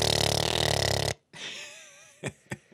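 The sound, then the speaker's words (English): A person vocally imitates their lawn-mowing tractor engine starting up: a loud, rough, raspy growl for about a second, a brief pause, then a wavering hum ending in two short sputters. “What's our tractor sound like when we start it up?”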